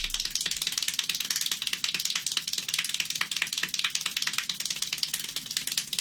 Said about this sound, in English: I hold the world record for most claps